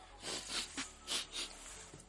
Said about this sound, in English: Don't mind my sniffles and shit, you know what I'm saying? I just sneezed, goddamn.